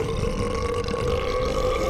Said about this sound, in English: I'm sure Sarah Silverman makes way more disgusting burps than that.